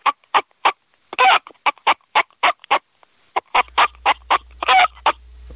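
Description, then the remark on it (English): A woman vocally imitates a chicken, making a rapid series of short clucks in uneven bursts, with a few longer, louder squawks mixed in and a faint low hum in the second half. “Oh, she's going to drive our chickens crazy.”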